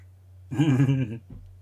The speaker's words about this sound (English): Well, she snores like a man.